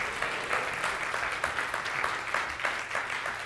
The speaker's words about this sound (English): All right, give God a hand clap.